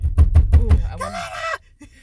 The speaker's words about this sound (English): I really do wonder how that knocking is going to sound on the recording. If you have earbuds in, I'm sorry.